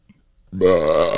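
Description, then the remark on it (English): A loud, guttural burp erupts after a brief silence and rumbles on steadily for over half a second, rough-toned, with no talking over it. “I can burp on command.”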